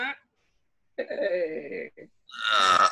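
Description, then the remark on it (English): A long, guttural burp rumbles for about a second, followed after a short pause by a second loud, raspy belch-like sound. Both are prominent, with no other sounds around them. “Oh, that's a beaut. Mid-burp.”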